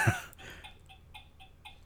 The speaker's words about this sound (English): Yeah, stupid ticking.